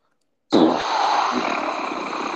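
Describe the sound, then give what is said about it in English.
A voice abruptly bursts into a loud, sustained, rumbling roar, imitating a revving car engine, holding steady and rough for about two seconds after a moment of silence. “Did you turn into a car for a second?”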